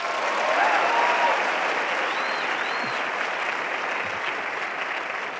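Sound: round of applause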